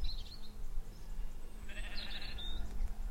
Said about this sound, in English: There are no roads to be seen. And there are sheep everywhere.